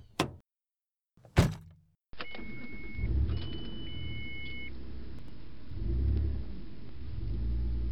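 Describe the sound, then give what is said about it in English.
Two sharp thumps, then the engine of a black American muscle car catches and settles into a steady low idle rumble, with thin whirring tones like power windows sliding down over the engine noise. “I slide into the driver's seat and crank the AC as soon as the car is on, leaving the windows down to let the air circulate out.”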